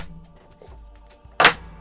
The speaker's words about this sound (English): I'm going to break this glass, aren't I? We knew. Did I crack it?